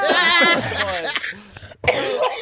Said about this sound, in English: Making the two chubby people cough. That's when you know a joke's funny. The two fat people go, We're literally all dying.